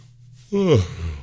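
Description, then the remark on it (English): A single human yawn late in the evening after a long day: a sudden breathy intake that slides into a drawn-out voiced groan, falling in pitch and trailing off softly, with no talking around it. “There's my crypto crow yawn again.”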